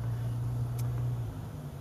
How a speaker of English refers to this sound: I'm stuck in traffic, so I was able to find your link and post it.